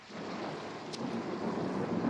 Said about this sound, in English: I do appreciate the well-timed boom of thunder after he says that.